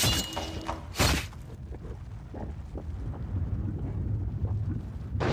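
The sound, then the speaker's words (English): A sharp, loud blast bursts out about a second in, then gives way to a deep, continuous rumbling roar that churns on steadily, like a volcanic eruption, with no voices; it depicts the explosion from the peak of Mount Vesuvius that rattled Pompeii and Herculaneum in 79 AD. “At around noon, an explosion from the peak of Mount Vesuvius rattled Pompeii and its neighboring fishing village of Herculaneum.”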